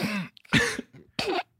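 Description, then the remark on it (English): Three muffled, stifled coughs in quick succession, held back with closed lips so they come out as short throaty bursts rather than full open coughs, fairly quiet. “Why are you hiding your coughs, man?”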